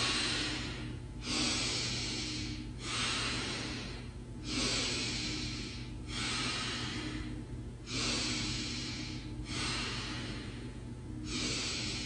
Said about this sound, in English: And we're going to do 5 more breaths, and then we'll have a couple of integrating breaths and close the practice. When you're ready, breathing in and out.